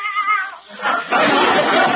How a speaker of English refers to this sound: Meow. What was that?